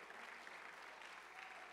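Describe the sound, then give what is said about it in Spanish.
A church audience applauds to God together, a steady wash of many hands clapping that holds evenly for a couple of seconds, full, with no voices standing out. “Si usted lo cree, dele palmas a Dios por lo que va a ocurrir de aquí en adelante.”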